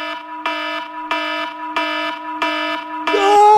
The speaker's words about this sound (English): Just giving a demonstration of what everyone's feeling when they hear that. That terrible, god-awful alarm.